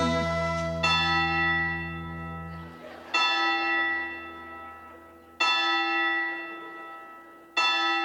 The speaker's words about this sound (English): She went up to heaven. All her church bells they did ring.